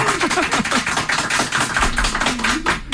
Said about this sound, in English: And those claps from everybody else that will be on today's Sports Power Talk.